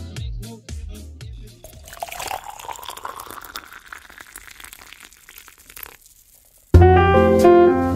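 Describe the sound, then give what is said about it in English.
Hot black coffee pours steadily into a cup for several seconds, its gurgling pitch rising as the cup fills, after a few soft knocks; music starts abruptly at the end. “So let's get ready for a delicious, delicious, black, hot, warm cup of coffee.”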